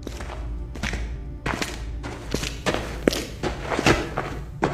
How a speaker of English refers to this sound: Clicker hears the sounds of footsteps approaching inside the other room